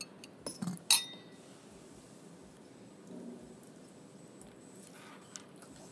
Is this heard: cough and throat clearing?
no